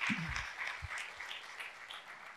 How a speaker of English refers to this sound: Come on, if He is worthy, then show Him by clapping and giving Him glory and honor and respect.